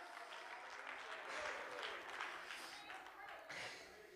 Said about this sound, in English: Come on, clap your hands and shout amen if you're grateful for a new things kind of God.